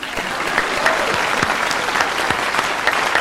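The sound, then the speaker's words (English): A steady wash of crowd applause, added as a Foley sound effect for a co-host's introduction, dense and fairly loud throughout, with a few sharper individual claps popping out of the texture; no one speaks. “He's clapping for himself. I'm just adding a little Foley.”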